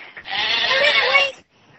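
A single drawn-out sheep bleat, loud, wavering for about a second before cutting off, followed by a brief quiet stretch with faint background noise.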